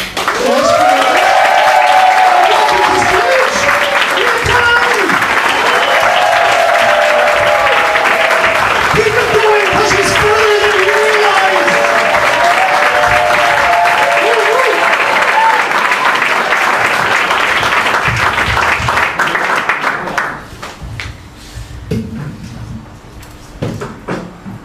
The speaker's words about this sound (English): Are we ready for our first act? Yeah! Correct. You lot, you are pumped up, you are ready. Please, start clapping, go wild.